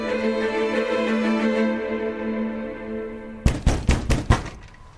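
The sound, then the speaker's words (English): A low, sustained drone fades out, then five sharp, loud knocks on a door land in a quick, uneven burst near the end, each ringing briefly. “Part of me knew the knock at the door would come.”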